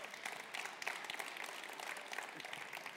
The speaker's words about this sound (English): Come on, can we give God a clap for that?